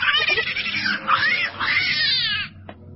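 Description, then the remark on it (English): A cat named Susie yowls loudly in one long, wavering, drawn-out cry lasting a couple of seconds, rising and falling in pitch before cutting off abruptly, with no talking. “Susie, what's the trouble? Kitty, what?”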